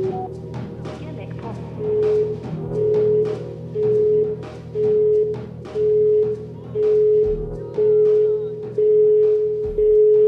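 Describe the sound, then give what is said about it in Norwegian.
A steady electronic voicemail beep tone repeats about nine times at an even pace, each pulse clear and fairly loud over a busy, murmuring background. “Legg igjen en beskjed etter tonen.”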